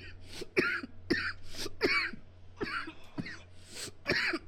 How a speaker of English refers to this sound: Ooh, I just coughed so hard my nut retracted a little bit.